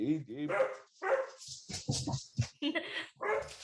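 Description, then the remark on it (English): A dog barks and yips repeatedly in short, irregular bursts, loud, with some whimpering tones mixed in and people talking around it. “has the dog got an answer, …? Our dog has got an answer.”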